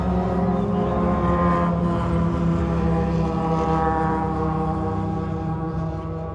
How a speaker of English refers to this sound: I'm gonna pause for these cars.